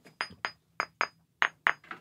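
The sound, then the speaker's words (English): Seven sharp taps on a flint rock in an uneven rhythm, done to test its soundness (a dull thud would mean a crack), each a bright, hard click with a faint high ringing tone that fades quickly. No one speaks. “I see you tapping. What are you tapping? Just listening to the harmonics?”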